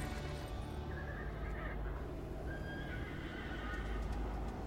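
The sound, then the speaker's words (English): In a Budweiser commercial, Budweiser Clydesdale horses deliver beer through a big storm, neighing with two drawn-out, high whinnies rising over a steady, loud rumble of background noise and what sounds like hooves clopping underneath. No one speaks. “So basically, the premise here is that there's a big storm, power goes out at a local bar, beer truck cannot make it through the mountains, and only the Budweiser Clydesdales can come to the rescue and deliver the beer.”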